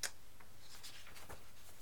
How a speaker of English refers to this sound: It's not that one, is it? Sorry, we're just, again, shuffling paper.